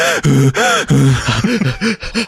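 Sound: imitated heavy breathing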